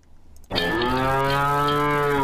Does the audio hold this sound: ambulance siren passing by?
no